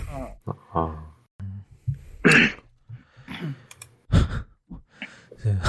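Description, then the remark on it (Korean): A person coughs and clears their throat several times in short, harsh bursts at uneven intervals, with a couple of louder coughs standing out between quieter breathy rasps. “오늘 예, 저 아저씨가 기침 소리 제거한다고.”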